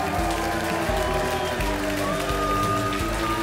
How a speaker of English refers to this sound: Yeah, keep it coming, keep it coming. Yeah. I only got 7 minutes. If you keep clapping, I don't have to say anything.